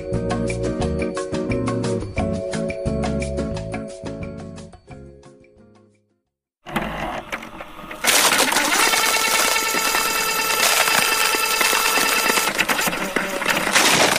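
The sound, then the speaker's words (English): A nearly frozen printer prints a page, starting with stepped motor whines and pulsing tones, then shifting into a loud, steady mechanical whirring and rattling as the page feeds through. No one speaks. “Despite the fact that the printer is practically frozen, we did manage to get a word of the week.”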